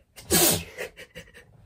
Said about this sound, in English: I'm just going to sneeze.